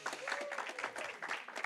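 Steady audience applause, a dense wash of many hands clapping at a moderate level throughout, with faint crowd voices mixed in.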